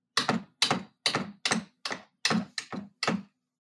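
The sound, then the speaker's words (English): A typewriter clacks out about eight sharp, heavy keystrokes in a steady, unhurried rhythm, each strike crisp with a short ring-off, and no voices. “Surprising, considering the typewriter.”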